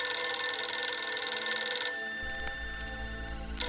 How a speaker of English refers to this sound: The red phone, an evening call.